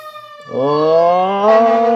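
A fire truck carrying Santa through a neighborhood sounds its siren, which winds up and wails loudly, its rich harmonic tone gliding steadily upward in pitch and holding strong to the end. No voices are heard.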